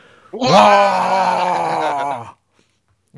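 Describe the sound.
Several voices bellow a single loud, sustained "waaah" together, the war cry orcs yell when going to war, started on a count of three, held for about two seconds with a rough, strained pitch before cutting off into silence.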